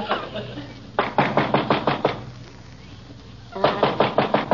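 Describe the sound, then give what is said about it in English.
Two bursts of rapid knuckle rapping on a door that has no doorbell, six or seven sharp knocks each, separated by a short pause, over a low steady background hum. “Wonder he couldn't install a doorbell. Cost a few cents a year to run a doorbell. You can get new skin on your knuckles for nothing.”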